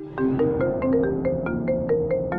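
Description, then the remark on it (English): A cell phone ringtone sounds upstairs in a house, in a bedroom, playing a quick melodic sequence of bright, regularly spaced tonal notes, steady and fairly loud, with no voices. “After I finished vacuuming, I caught the tail end of a cell phone ring somewhere upstairs. A few moments later, it rang again, leading me to Riley's room.”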